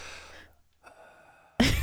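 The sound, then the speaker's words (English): A voice imitates the heavy, raspy breathing of someone on the cusp of snoring but not quite there, a couple of drawn-out breaths edging toward a snore, ending in a loud, harsh burst. “So you're on the cusp of snoring, but you're not quite there.”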